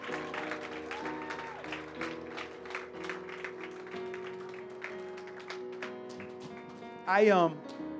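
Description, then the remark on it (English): An audience claps as a clap offering to the Lord over sustained organ or keyboard chords, the claps coming as a steady run of sharp bursts, with a loud whooping voice rising briefly near the end. “Come on, give a clap offering to the Lord.”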